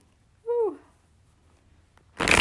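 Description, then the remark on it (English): A brief squeaky tone, then a quiet pause, then a loud, dense burst of fluttering card noise from a deck being shuffled, running to the end. “I hope you all enjoy the awful shuffling noises I'm making.”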